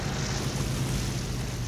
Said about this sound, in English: The plane comes in to land on the water.